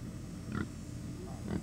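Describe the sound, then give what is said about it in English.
Two short pig grunts about a second apart on a farm in Dublin, over a steady low rumble of farmyard background noise with no one speaking. “Comfort Farms is ripe with everything from okra and tomatoes to chickens and pigs.”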